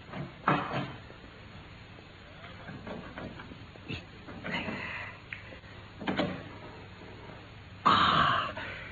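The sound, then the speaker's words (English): A heavy safe door is worked open: scattered soft clunks and scrapes, then a sharper, louder metallic creak near the end. “Open, Watson. You've done it?”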